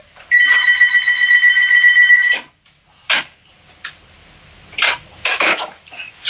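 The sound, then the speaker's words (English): A loud telephone bell rings in one sustained two-second burst, then stops, followed by a few sharp clicks and clattering knocks like a handset being picked up. No one speaks. “I'm going to get that phone.”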